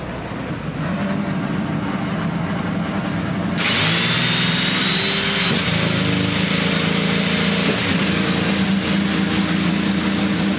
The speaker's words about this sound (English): As 24 engines roar to life